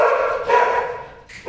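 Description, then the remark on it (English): Dogs, among them the small dog Scout, who started it, and Rudy, bark loudly in a steady, overlapping stream of sharp, mid-pitched barks and yips, with a fresh burst at the very end and no talking. “But oh no. The dogs are here.”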